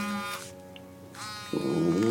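Archie Flowers' cell phone vibrates at the Flowers house in Winona with two short, rattling buzzes separated by a brief pause, clear, followed by a louder tonal sound that takes over at the end.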